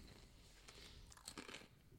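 Chewing with crisp, irregular crunches, a few sharper bites standing out near the middle, all fairly loud with no talking.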